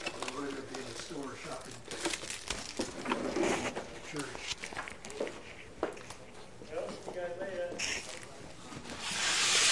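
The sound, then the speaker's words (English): A small bag crinkles and rustles in repeated bursts of crisp, papery crackling as it is fetched to pack a couple of items to take home, with murmured voices underneath and a brief rise of hissy rustle toward the end. “Let me get a little bag.”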